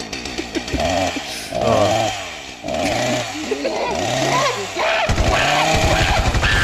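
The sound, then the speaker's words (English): A chainsaw revs up and down in repeated surging bursts, loud, its rough motor whine rising and falling over several seconds with barely a pause. “They did an international arms deal to send the chainsaw to Japan.”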